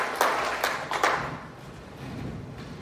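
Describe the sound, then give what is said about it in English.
A church audience claps together for the Lord during a service in a brief burst of applause, a few sharper claps standing out at the start before the clapping thins and fades into a low murmur of shuffling. “Clap your hands together for the Lord and please be seated.”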